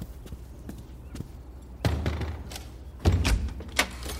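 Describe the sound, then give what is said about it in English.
A front door is handled and swung open: a few sharp latch clicks, then two heavier knocks and thuds of the door moving, fairly loud against a quiet background, with no voices. “I'll get it. I'm close to the door.”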